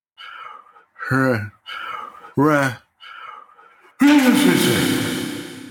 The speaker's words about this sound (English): Gesundheit.